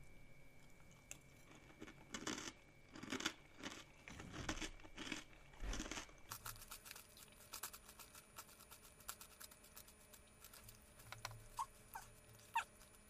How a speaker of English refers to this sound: I didn't really swallow much of that. I was more chewing on it.